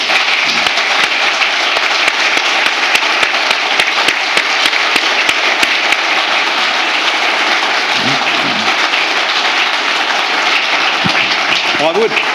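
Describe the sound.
An audience gives a round of applause for John Barnard, dense clapping holding at a loud, even level throughout, with a few sharper individual claps and faint voices or whoops surfacing within the noise.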